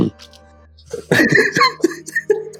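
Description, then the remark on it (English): A voice imitates a cat hacking up a hairball: a run of raspy gagging coughs and throaty retches in uneven bursts, fairly loud, with no words spoken. “did you just cough up a hairball?”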